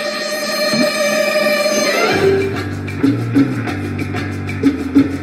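A short celebratory music cue, played from a computer when a sample is ready to be picked up, plays on its own, opening with bright sustained chords, then shifting into a bouncy low bass line punctuated by a few sharp rhythmic hits.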